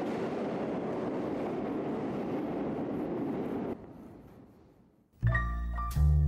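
A subway train roars past with a loud, steady rumble that fades away, followed by a sharp, tonal squeal or whine. No voices.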